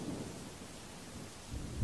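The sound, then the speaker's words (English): A steady wash of heavy rain with deep rumbling underneath, swelling into a louder low roll of thunder near the end; no voices. A storm at sea, heard from a boat about 10 miles off the coast of Whitby at night. “We're out in a storm about 10 miles off the coast of Whitby.”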